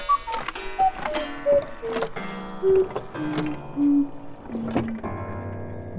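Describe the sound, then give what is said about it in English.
A cuckoo clock chimes, repeating its two-note cuckoo call about half a dozen times over ringing metallic strikes, steady and clear with no one talking. “Well, you'd better set your watch to my trusty cuckoo clock.”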